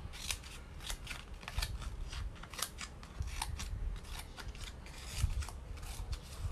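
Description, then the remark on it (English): Crisp snips of scissors from a pencil case cutting through paper that is not new, repeated in a quick irregular rhythm with soft rustling between cuts, no voices. “First thing is scissors.”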